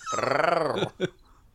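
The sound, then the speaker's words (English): A person imitates a dog's growl: a single sustained, rumbling guttural snarl lasting close to a second, followed by a short gruff grunt, loud, with nothing else around it. “It's like you growling.”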